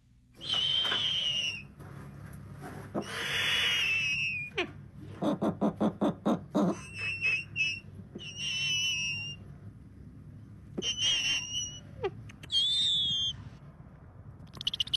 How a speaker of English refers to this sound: I want us to listen now to some of the noises that a snowy owl can make. Now, in this next clip, you're going to hear Elsa. That's a snowy owl that was made famous by a TikToker who's a raptor handler.